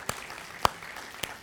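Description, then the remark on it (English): Three sparse, isolated hand claps from an audience, spaced about half a second apart, each sharp and brief against a quiet hiss, with no voices. “That's okay, you can clap, it was good.”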